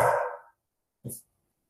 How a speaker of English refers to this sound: Dog decided to tell me it's time to go for a walk.